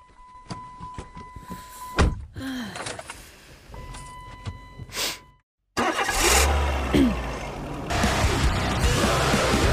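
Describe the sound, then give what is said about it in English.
The engine of the speaker's own car cranks and turns over after a few clicks and mechanical clunks, then catches and roars into a loud, steady idle that rises in revs. “Metal story straight from hell. Well, actually, it's my car.”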